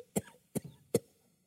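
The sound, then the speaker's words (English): Three sharp coughs in a quick, evenly spaced burst, fairly loud: a pastor in the 1800s choking on smoke from an oil lamp whose wick burned dry during an evening service, then silence. A person voicing the coughs; no talking. “Like one pastor in the 1800s illustrated, he was teaching by the light of an oil lamp in an evening service when all of a sudden the oil ran out of the lamp and the wick burned dry and started to smoke, making the pastor cough.”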